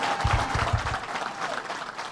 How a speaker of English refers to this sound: First to Howard Zemsky and the Empire State Development Corporation that worked for months to make this happen. Give Howard Zemsky a big round of applause.